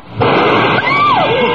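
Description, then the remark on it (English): A sudden loud blast as a glass is blown up with explosives and shatters into thousands of tiny pieces on the floor, followed by a sustained noisy crash with faint ringing, whistling tones sliding downward in pitch. “It's broken into thousands of tiny pieces.”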